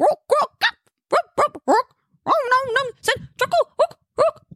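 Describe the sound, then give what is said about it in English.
A human voice sings a goblin song as a harsh, guttural chant of short barking bursts, with a longer warbling phrase in the middle, fairly loud with brief gaps between sounds. “… cleared his throat and then barked out a guttural.”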